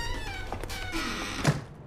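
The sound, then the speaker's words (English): A single heavy thunk as a round lid is slammed shut by the Doctor inside the TARDIS, landing sharply near the end over a steady, faint humming background with no speech. “He slams the round thing shut and runs back outside the TARDIS”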